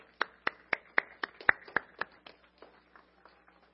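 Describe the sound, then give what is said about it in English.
Sharp, evenly spaced hand claps of applause for three volunteers, a dozen or so at a brisk pace, ring out clearly and then fade into softer, scattered claps as the applause dies away, with no talking. “Let's have a round of applause for the three volunteers.”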